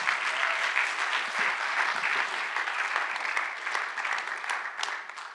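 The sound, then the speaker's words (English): Sustained applause from a large crowd in Cedar Falls, a dense, steady wash of many hands clapping at once with no voices over it, holding at an even loudness throughout, welcoming an area director for Western Europe as he comes up to speak. “let's give him a round of applause as he comes.”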